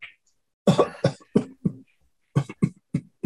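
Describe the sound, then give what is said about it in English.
A loud coughing fit: a rapid run of harsh coughs, a brief pause, then another burst of several more. No one speaks. “the thing that you get from this is you kind of start having a coughing fit.”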